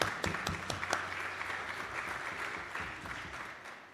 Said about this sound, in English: Your gift last week raised the total to just over 4,000, and I really want to give a clap for that.